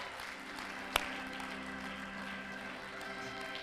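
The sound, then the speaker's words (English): An audience claps steadily, forming a dense, even wash of hand claps. One sharp, louder clap stands out near the start, and no voices are heard. “Come on, clap your hands in the house.”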